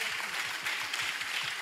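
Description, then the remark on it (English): A crowd claps together in a dense, steady wash of applause, with a faint rhythmic pulse running underneath; no one speaks. The clapping was started by one section of the audience. “Thank you to this section for starting up that clap.”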